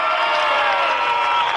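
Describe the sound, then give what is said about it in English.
A parade crowd applauds and cheers a float in a dense, steady wash of clapping and voices that stays loud and even throughout, with no single voice standing out. “Yeah, see, they're applauding out there.”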